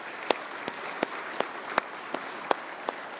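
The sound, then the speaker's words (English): An audience at Lakes Free applauds the Wednesday night volunteers who serve the kids. It is a dense wash of clapping, with sharp, louder claps cutting through at a steady beat of roughly three per second. No one speaks. “We just want to give you a big round of applause today and thank you for your investment in our kids.”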